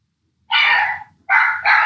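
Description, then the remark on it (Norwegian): Dogs Sunday and Mali bark three times in quick succession, a longer bark followed by two shorter ones, loud with no talking over them. “Det bare Sunday og Mali i bakgrunnen, som bjeffer litt.”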